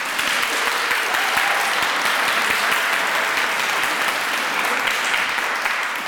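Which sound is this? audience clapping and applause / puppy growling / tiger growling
audience clapping and applause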